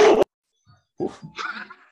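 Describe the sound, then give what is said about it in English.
A dog barks angrily: one sharp, loud bark, a short pause, then a rougher run of growly barking. “Y'all done lost and his dog got mad.”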